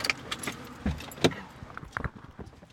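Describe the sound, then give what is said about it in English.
Keys jingle, followed by a few sharp clunks and rustles as several people climb into a car and settle in. There is no talking, and there is no clear engine sound. “We pile into the car, and Trish drives us to Goodwill.”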